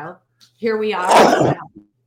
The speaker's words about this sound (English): Bless you.